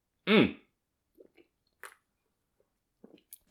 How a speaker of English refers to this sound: God, let me just get a sip of this beer real quick. Hold on. I'm parched.